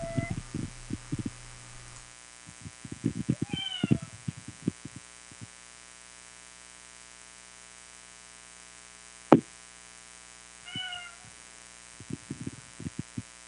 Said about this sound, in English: Is there a cat meowing? That's your cat. Yeah. Get that cat closer.